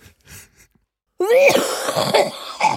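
A loud coughing fit bursts in after a near-silent moment, harsh and raspy with strained, voiced hacking that runs on for over a second before trailing off.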